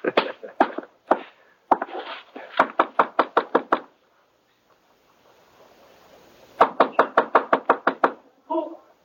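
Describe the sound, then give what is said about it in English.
Repeated knocking on a door in quick bursts, a few loose raps, then a rapid run of about eight knocks. After a quiet pause comes another fast, loud series of knocks. “Well, opening the door might be one way of finding out.”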